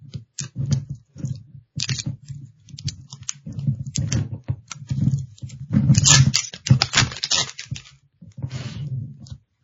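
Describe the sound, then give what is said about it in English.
Plastic wrap is peeled and crinkled off a whiskey bottle: a steady run of irregular crackles and snaps, louder bursts around the middle, with no voices. “So we're going to enjoy the noise with this from the very beginning of cracking it open, unwrapping it, and pouring, okay?”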